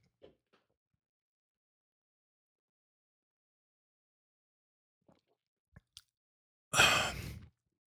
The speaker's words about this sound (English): So, all right, so it looks like it's settled. Let me take a quick gulp.